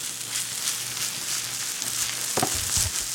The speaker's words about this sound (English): Sprinkle a little cheese on the meat while it's sizzling. Let that thing start melting, mix it in.